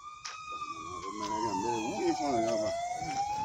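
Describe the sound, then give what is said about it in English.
An ambulance siren wails at a distance, its tone sliding slowly downward and then climbing again, steady and continuous over faint background murmur. “Ebola survivors are often traumatized by an ambulance siren whirling in the distance.”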